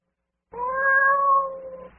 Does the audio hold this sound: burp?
no